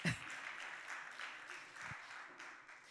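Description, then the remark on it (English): A crowd applauds steadily for a few seconds during a talk on faith and mental health, a dense, even patter of many hands clapping at a moderate level. “Yeah, it's okay to clap.”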